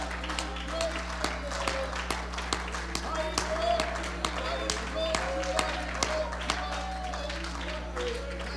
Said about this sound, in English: Can we give him a hand clap of praise in this place this morning?